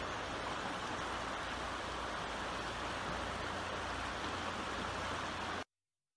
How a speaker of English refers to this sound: A spring is where a river starts. And which is a good thing I don't have one in my house, but near my parents' house is a river. Here's a video of it.